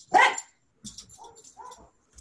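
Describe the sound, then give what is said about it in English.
A small dog, Lug, reacts to hearing a voice with one loud, sharp bark, followed by a few softer, lower muffled grumbles and huffs before the sound fades out. “I just got a woof out of Lug then.”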